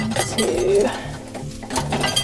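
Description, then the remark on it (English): Spoons, bowls and other kitchen utensils clink and clatter in a short burst of handling as a cook sets out everything needed, including a knife and chopping board, to prepare food, with a soft cooing-like tone in the background. “So I've got everything out, spoons, bowls, knife, chopping board, everything's ready.”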